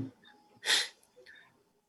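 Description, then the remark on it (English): A single sharp, loud sneeze bursts out from a person during a meeting roll call, with soft breathy sounds before and after it and no talking. “I'm sneezing, but I'm here.”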